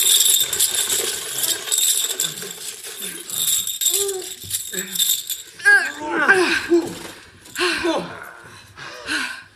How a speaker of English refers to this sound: Is that money? Tons of it. But it's all in coins. Grab your backpacks, scoop whatever you can into them.